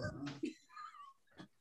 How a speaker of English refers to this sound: I have to save my dog from being humped. Come on. Oh God.